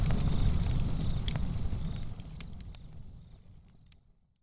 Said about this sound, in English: Campfire.